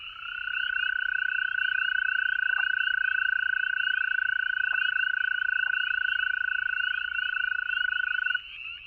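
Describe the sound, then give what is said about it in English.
A continuous, high-pitched trill from toads holds steady for about eight seconds, with overlapping callers forming a loud chorus that breaks off near the end. Nobody speaks. “For me, the trilling of the toads marks a turning point in the seasons.”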